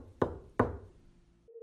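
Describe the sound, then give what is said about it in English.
Two sharp, resonant knocks on a wooden table, spaced less than half a second apart, heard after a spirit was asked to knock again, followed by quiet and then a faint steady hum at the very end. “And I asked the spirit to knock again. It took a few requests, but eventually it happened again.”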